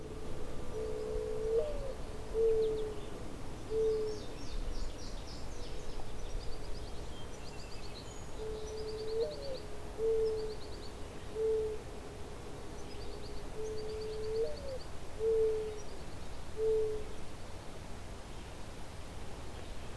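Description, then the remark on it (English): A mourning dove coos three times beside a road between two quarry pits on the Nassagaweya-Esquesing town line in Halton, Ontario, each phrase a soft, low, hollow series of drawn-out notes, spaced several seconds apart over a steady hiss of background noise with faint twittering from other birds. “Its eponymous, mournful tones can be heard in most of North America in nearly any habitat where birds are found.”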